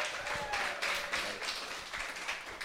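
An audience at an evening storytelling event breaks into steady applause for a storyteller, a dense wash of many hands clapping at a fairly even level, with a faint whistle or cheer briefly rising above it.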